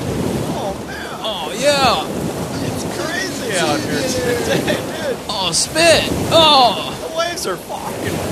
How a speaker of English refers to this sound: Dude, these waves are so totally chill right now, dude.